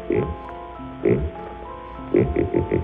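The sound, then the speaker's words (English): A buzzy, synthetic vocoder voice imitates a pig's oinks, a novelty animal noise like those made for crowds at the 1939 World's Fair: a single low grunt, another a second later, then a quick run of four snorting oinks at the end. “It started its public life as a silly novelty gag, making animal noises for crowds at the 1939 World's Fair. And here's a pig.”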